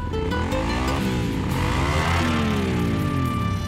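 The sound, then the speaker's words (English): A motorcycle engine revs up and down several times, its pitch rising and falling in loud bursts with a steady rumble underneath and no voices. “Don't horse around when it comes to motorcycle safety.”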